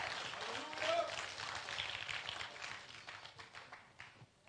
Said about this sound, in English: Won't you clap your hands to the Lord while you're seated?